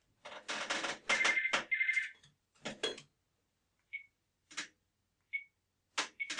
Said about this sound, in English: Just, oh, balls, my phone's going off. Hang on.